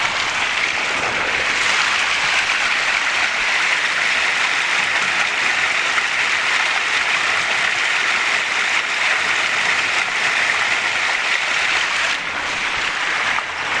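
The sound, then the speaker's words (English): A small waterfall, heard from a bridge above the water, flows in a steady, unbroken hiss and rush of water, fairly loud, with no voices or other sounds over it. “And of course, if I go to the other side of the bridge, you can hear the little waterfall.”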